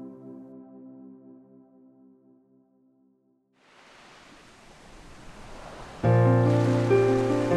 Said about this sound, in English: The sound of the sea, relaxing waves, and soothing music.